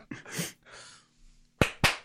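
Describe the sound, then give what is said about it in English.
Two sharp, loud hand claps in quick succession, used as a recording sync marker, preceded by softer breathy rustling noises. “No, I was dropping a marker so start I knew the recording.”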